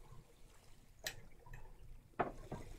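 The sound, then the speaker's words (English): Water rushes faintly through a pipe as a low, steady hiss, broken by a few brief, louder gurgling surges. No one speaks. “You can't in real life because the water pipe's going on.”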